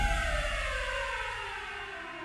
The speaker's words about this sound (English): Down he sank into an endless black, occasionally broken by the momentary images of Jaime Weiss, soaked in Torrio's own black blood, being dragged away by his men, and the deafening arrival of police cars.